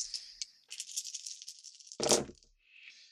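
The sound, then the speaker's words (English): Two black dice rattle in a quick, dense clatter for a couple of seconds as they are rolled, then land with a sharp, louder clack, followed by a faint trailing rattle. No one speaks. “There are two black dice because you are fighting a bunch of monkeys at the same time.”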